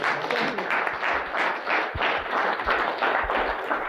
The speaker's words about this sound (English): Big round of applause for the lady.